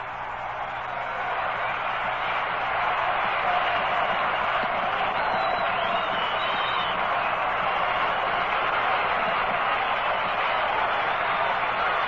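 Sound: baseball stadium crowd cheering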